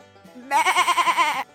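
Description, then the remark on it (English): A goat bleats once, loud, a single wavering call lasting about a second with a rapid quivering tremble, heard alone with no talking. “They went a little further, and they met a goat.”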